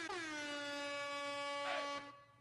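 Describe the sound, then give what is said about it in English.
A single loud air horn blast holds steady for about two seconds, a bright, brassy tone rich in harmonics, then cuts off abruptly with no voices present. “Has anybody played the air horn for Joan Rivers?”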